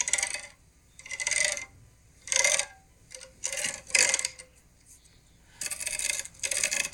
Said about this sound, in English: No, it's me taking my ring over my tennis racket.